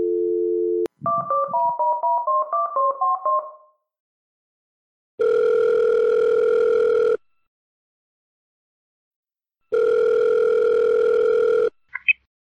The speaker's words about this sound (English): So let's go ahead and get him on the phone over in the UK and discuss cask ales a little further.